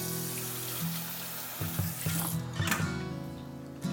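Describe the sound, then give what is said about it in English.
A faucet runs steadily while hands are rinsed underneath after touching chicken during cooking, with a continuous hiss of water and some irregular splashing and shifts in the flow. No one speaks. “All right, make sure you wash your hands after you touch the chicken before you do anything else.”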